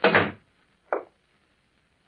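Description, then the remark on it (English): The door of a little shack is shut with a solid thump, then a shorter knock a moment later and a faint bump at the end, with no voices. “He shut the door.”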